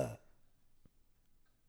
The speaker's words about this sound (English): I don't even have time to burp. Buddy, I'm impressed that you even made time to burp. I've been holding in all my burps.